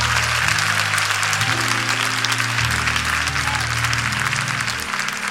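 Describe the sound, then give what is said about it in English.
A church audience claps hands to praise God after a sermon, a sustained, dense wash of applause, loud and steady for several seconds, with low sustained organ or keyboard tones underneath. “If you were blessed by the word, clap your hands and praise God for his word.”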